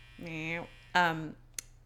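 Two short, flat buzzes from a clothes dryer sound in quick succession over a low steady hum, followed by a brief click, with no one speaking.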